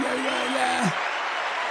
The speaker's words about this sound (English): Oh, here we go. Another applause.